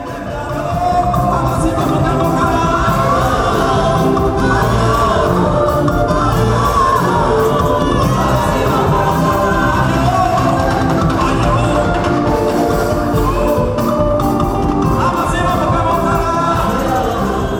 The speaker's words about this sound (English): We are hearing a high-life gospel band playing for thousands under a stadium-sized tent on a Sunday morning at the Omega Power Ministry, OPM.